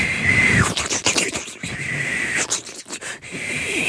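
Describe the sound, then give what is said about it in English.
A voice imitates a boiling kettle with a continuous breathy hiss and a brief high whistle near the start, rising and falling in bursts for several seconds. “That was a kettle boiling.”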